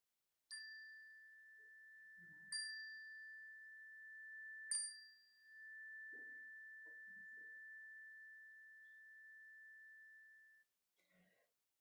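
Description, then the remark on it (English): A chime is struck three times about two seconds apart during a shared prayer, its clear bright tone sustaining and slowly fading for several seconds afterward, with faint soft voices murmuring underneath as names of people and places in prayer are spoken aloud. “And I invite you to call to mind the names that are in your heart today, people and places that are in your prayers, and speak them aloud as the chime rings so that we can hold them with you.”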